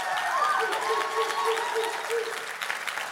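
An audience applauds steadily for two preachers, a dense wash of clapping that holds fairly loud throughout, with a faint tonal hum or whistle threading underneath.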